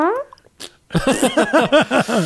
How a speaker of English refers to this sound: A nice little question mark fart.